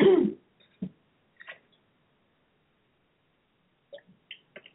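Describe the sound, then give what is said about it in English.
A few soft, brief sipping and swallowing sounds from a drink of water, spaced apart by stretches of near silence, with no one talking. “Okay, so I'm going to get a little water here, guys.”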